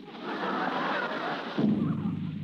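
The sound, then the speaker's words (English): A muffled gunshot booms and rolls into a sustained, rumbling roar, then drops to a deeper, steady drone about halfway through. No one speaks. “I swear it was a gun. There. Hear it?”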